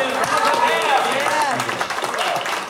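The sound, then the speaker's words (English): An audience claps steadily for a few seconds, a dense patter of many hands, with voices talking and calling out over it. “I'm glad you're clapping because nobody remembered the name Denison's.”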